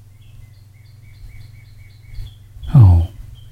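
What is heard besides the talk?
birds singing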